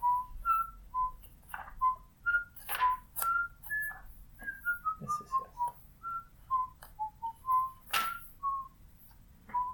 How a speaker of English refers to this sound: Don't cut the whistling. It's charming. No, I will.